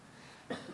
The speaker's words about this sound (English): There's a cough, just to prove it, yes.